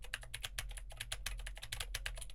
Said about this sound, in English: Now I am typing on a keyboard with Gateron blue switches to see how much of my voice versus how much of the keyboard it picks up.